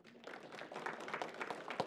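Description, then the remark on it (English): A church audience applauds in the morning to acknowledge people joining the church as members, with steady, overlapping hand claps forming a dense wash of sound and a few sharper individual claps standing out near the end. “Would you acknowledge those who are stepping into membership this morning with a hand clap?”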